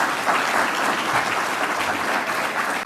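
Steady, loud applause from a large crowd for General Abbott for joining the event, a dense wash of many hands clapping continuously with no pauses and no voices standing out.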